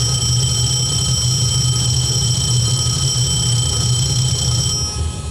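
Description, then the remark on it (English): An aircraft engine fire warning horn sounds as a steady, shrill tone that holds unbroken for about five seconds over a loud, low engine rumble, with no talking. “I would say that sounds like a fire warning horn.”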